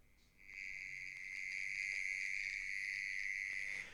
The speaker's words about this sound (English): The correct answer is mole cricket. It kind of looks like that guy. That makes that sound.